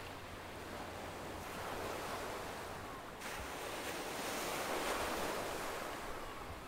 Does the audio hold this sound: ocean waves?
yes